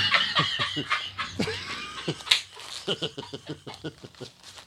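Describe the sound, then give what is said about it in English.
Irregular crinkling and rustling as crumpled delinquent tax papers are handled, with a quick series of sharp crackles and softer shuffles and no voices. “They're just like fucking crumpled up in here.”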